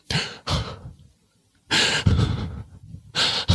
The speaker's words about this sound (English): That is my performance of heavy breaths laden with anxiety, which I felt like those were pretty good anxious breaths.